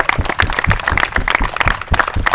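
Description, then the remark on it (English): A crowd applauds the walkers who raised funds for eating disorder research, many hands clapping in a dense, crackling burst that stays loud and even throughout, with no voices standing out. “So everybody give a big hand of applause for you guys one more time.”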